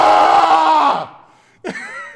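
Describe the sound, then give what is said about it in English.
A person vocally imitates the anguished scream of pain of a man shut in his office: a loud, strained cry for about a second that fades, then a shorter second burst of yelling. “he would just kind of keel over in pain in the middle of the day every now and then, have to walk into his office, close his door, and scream, which we could still hear because it wasn't a soundproof office.”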